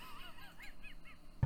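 A goose-like magic bird honks in a quick series of nasal calls, several rising-and-falling honks in a row, fairly faint, ending with a short thump.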